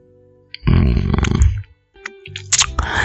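A sip of coffee: a loud, gurgling slurp and swallow lasting about a second, a short pause, then a second wet gulp with a faint squeak. No one speaks.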